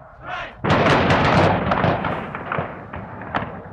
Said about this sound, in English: Guards who had moved the protesters away from the Commons by advancing with bayonets fixed now fired into the crowd. 13 students were hit. 4 died.